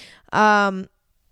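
A single drawn-out meow from a female pet cat, fairly loud, lasting about half a second, preceded by a faint breathy hiss and followed by silence.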